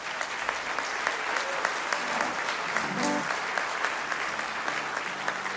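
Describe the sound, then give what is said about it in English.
An audience claps steadily for several seconds for a band's musicians, including a dobro player, a dense, even wash of many hands with no pauses. A few voices murmur faintly underneath the clapping. “And actually, if we're going to give them one more round of applause because they just got married and they flew direct in from their honeymoon to be here with us.”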